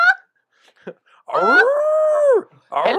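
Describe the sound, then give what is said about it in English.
A human voice imitates a whining dog with one long, wavering, nasal whine lasting over a second, framed by brief vocal bits before and after. It's fairly loud. “Hello there, dog.”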